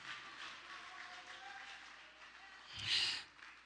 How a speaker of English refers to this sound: Woo, clap your hands and give God praise.